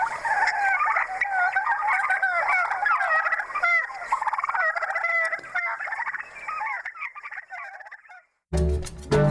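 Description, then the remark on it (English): Wild turkeys gobble in a loud, rapid, rattling chorus for about eight seconds, overlapping calls tumbling over one another, before a brief pause and a burst of different noise at the end. “turkey numbers have rebounded such that there are hunting seasons in all states but Alaska”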